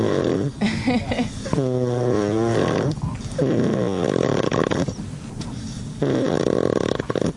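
Loud, rasping snoring from a sleeping man, heard up close in several long drawn-out breaths, one with a buzzing, almost whistling tone, and no talking.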